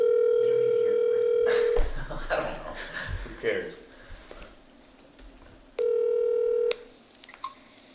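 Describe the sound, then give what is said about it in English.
A phone call rings out over a speaker, the phone held up to the microphone: a steady electronic ring tone lasts nearly two seconds, then after a pause with people talking, a second shorter ring follows. “And hopefully he answers. If he doesn't, we'll talk about these home cuts”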